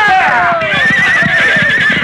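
A horse whinnies loudly with a long, descending cry, while hooves pound in a quick, steady rhythm underneath, continuous throughout.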